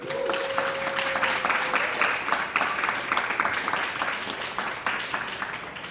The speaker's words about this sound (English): Please, can I get a warm round of applause for Brian and Michael Voltaggio and moderator James Osland.